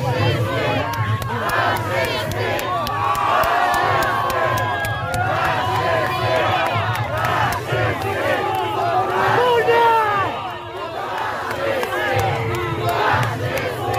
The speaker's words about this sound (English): was standing there attempting to lay a wreath at the cemetery of the Soviet soldiers in Warsaw, protesters had completely surrounded him, were shouting and yelling at him, and even throwing red paint on him and anybody else that was too close to him.